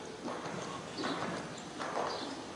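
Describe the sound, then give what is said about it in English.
A ridden horse's hooves clip-clop at a steady walking pace as the rider brings it to a walk, several soft evenly spaced footfalls on the ground, with a faint background hiss and no one speaking. “Good, and walk for a second.”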